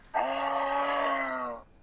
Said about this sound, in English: You didn't get that? You don't know the sound a moose makes?